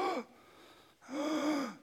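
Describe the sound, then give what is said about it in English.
Two sharp, raspy gasping breaths, one at the start and a longer strained one after a brief pause, fairly loud with no talking. “And then, with each breath, gasping,”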